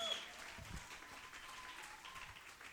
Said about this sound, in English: Give our band a big round of applause.